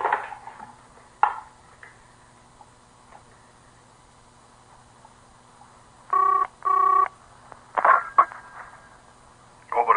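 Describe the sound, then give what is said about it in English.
A telephone in a doctor's office being dialed: two short, steady electronic keypad tones in quick succession, with scattered clicks and handling noises before and after in an otherwise quiet scene. “May I use the telephone, Doctor? Yes, please do.”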